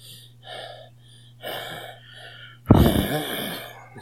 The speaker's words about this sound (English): Guys, I'm breathing really heavy because I'm so nervous about our first real awesome podcast.